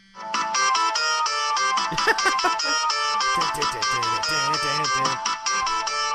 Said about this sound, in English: This is, I don't know if this is going to pick up very well, but this is actually my ringtone on my phone.